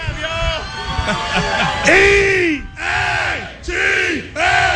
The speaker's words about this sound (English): Hey, the fire pit crew over here, they got something going on. They've been cheering us like every 3 seconds. Fire pit crew.